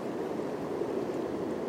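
A steady, unbroken wash of flowing water, a dense rushing hiss with a soft low rumble underneath and traffic going by occasionally, holding an even level throughout with no voices.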